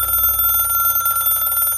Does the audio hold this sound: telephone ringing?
yes